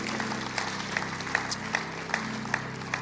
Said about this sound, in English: Praise God. Now give the Lord a hand clap. Praise God.